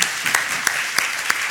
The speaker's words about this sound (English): An audience, please. We have a round of applause